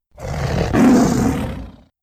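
A deep, loud snarling roar from a beastly creature in battle, ferocious, swelling to a rough peak and holding for about two seconds before cutting off. No one speaks.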